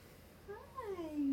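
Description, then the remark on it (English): A single drawn-out meow from a house cat that normally stays hidden, sliding downward in pitch, fairly soft, rising slightly in loudness toward the end over a quiet background. “My cat that never comes out is out.”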